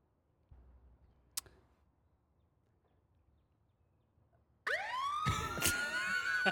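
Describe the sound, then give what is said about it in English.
After a few seconds of quiet low rumble and a single click, a New York police siren abruptly blares in, loud, with rapidly sweeping high wailing tones that continue to the end. “We have too long of a silence, the cops come. If you're a New Yorker, you're used to the sound.”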